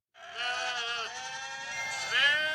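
A sheep bleats in one long, wavering call that swells louder near the end. It is clear, with no talking over it.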